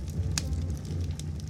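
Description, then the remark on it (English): A crackling fireplace fire: a steady low rumble of flames with scattered sharp pops and snaps, one crisp crack standing out, at a soft, even level with no voices. “Set to sleep-inducing music in this beautiful fireplace.”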